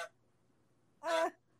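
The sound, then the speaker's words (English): A single short, raspy hacking burst as Eddie, a pet, coughs up a fur ball, loud against near silence, with a faint trailing breath at the very start. “Is that a that's Eddie coughing up a fur ball.”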